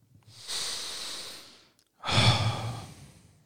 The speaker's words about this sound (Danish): Lige nu tager du en dyb vejrtrækning.